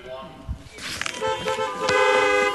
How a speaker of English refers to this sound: a lot of people in Ireland are actually playing bingo that way. They're driving up to their local car park, beeping the horn if they win a line or get a full house.